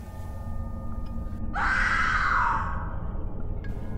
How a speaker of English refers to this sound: A blood-chilling scream came from outside, and the women and children held each other, hoping that they wouldn't have to share the same fate, and that this ordeal would soon be over.